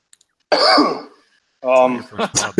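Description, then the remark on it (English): A single rough cough bursts out, about half a second long, followed by a short pause before a person begins talking. “your first cough.”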